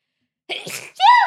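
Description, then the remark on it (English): A single sharp sneeze bursts in after a moment of silence, a noisy breathy blast followed by a brief voiced tail, fairly loud. “God bless you.”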